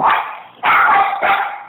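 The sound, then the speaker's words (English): A dog named Bentley lets out three loud, rough barks in a steady rhythm as somebody is at the door, each one bursting out sharply and trailing off before the next, with no voices alongside. “somebody's at the door.”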